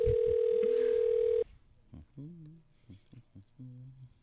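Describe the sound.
A steady electronic ringback tone hums loudly for over a second on an outgoing phone call, then cuts off abruptly as a voicemail greeting starts talking over the line.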